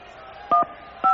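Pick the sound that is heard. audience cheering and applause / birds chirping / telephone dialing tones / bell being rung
telephone dialing tones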